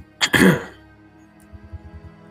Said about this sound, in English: I'll clear my throat.